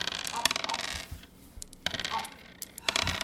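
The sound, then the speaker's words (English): Dice clatter and tumble across a hard tabletop in a few quick bursts of sharp clicks, with brief quieter pauses between rolls and no talking. “You just rolled a six, didn't you?”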